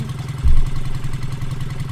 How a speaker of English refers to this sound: Anyway, let's get these revs up and hit that magic 5 miles an hour sweet spot. Here we go.